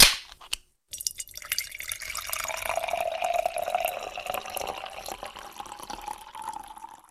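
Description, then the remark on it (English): A sharp pop as a beer is opened, a brief pause, then a steady pour with rising, fizzing gurgle as the glass fills. No talking. “The way that you pour that, dude, every time, perfect every time.”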